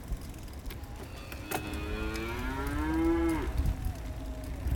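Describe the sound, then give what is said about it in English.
A cow lets out one long, drawn-out moo that rises and falls, clear, over a steady outdoor rumble that sounds like wind or traffic, heard while cycling along a road in Indonesia. “Oh, cows.”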